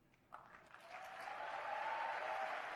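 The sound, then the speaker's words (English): A crowd applause sound effect: applause starts with a few scattered claps, then quickly swells into a steady, dense roar of clapping from a crowd that holds loud to the end, with a faint whistle-like tone riding on top. “And the crowd goes wild.”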